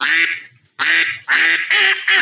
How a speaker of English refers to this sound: There's my duck, but she has no answer for me.